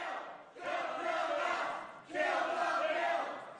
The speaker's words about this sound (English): Kill the bill, they're yelling. Kill the bill. I think they went on also to yell shame. Progressive activists like to take quotes from Game of Thrones. They like to yell shame at people. But kill the bill, don't kill us, is what they were screaming.